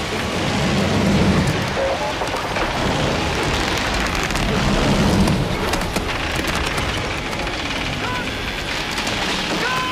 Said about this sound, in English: But yeah, this rope bridge in a monsoon rainstorm.